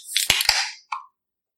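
Glasses clink together in a quick double knock with a bright, jangly ring, then one short, clear chime rings out and fades. No one speaks.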